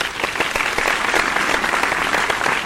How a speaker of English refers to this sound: The clapping? Yeah. That I just did? Yeah. That you can't do anything about?